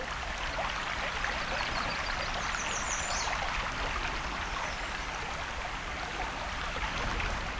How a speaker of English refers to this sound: You can hear the river nearby. I believe that's Crane River.